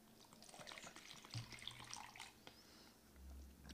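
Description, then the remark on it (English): Someone slurps apple cider from a cup filled to the top, a soft, wet, gurgling intake of liquid that rises and falls over a few seconds, with no talking and a brief low thump at the end. “Nice little slurp there.”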